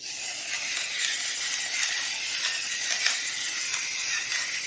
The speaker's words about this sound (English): So here's our beautiful salmon. We're going to get some salt and pepper. And we'll put a few cranks, some fresh ground sea salt, and black pepper.